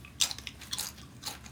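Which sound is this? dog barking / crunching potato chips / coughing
crunching potato chips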